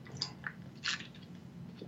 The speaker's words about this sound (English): Sorry about that. I had to take a sip of water.